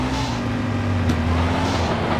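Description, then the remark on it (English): A video game car engine roars steadily as the player gives it full gas, a loud, continuous droning hum with buzzy tonal layers and no voices over it. “I'm literally gassing it, bro.”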